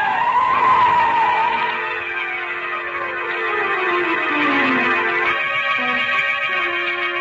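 A car skids hard with a long, loud screech of tires as it nearly runs down a person on a street, the pitch sliding downward over several seconds before fading into a lower engine rumble. No one speaks.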